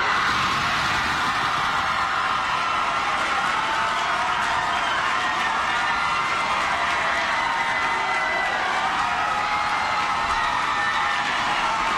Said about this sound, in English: That's a lot of applause.